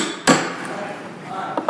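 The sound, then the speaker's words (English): A single sharp hammer strike on a punch, punching a small hole before drilling with a large drill bit, with a brief metallic ring fading afterward, followed near the end by a lighter, quieter tap. “We punch a little hole for you.”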